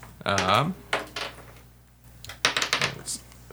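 Dice clatter and rattle across a tabletop in two quick bursts of tapping clicks as players roll for initiative, with a brief voice sound just before the first burst.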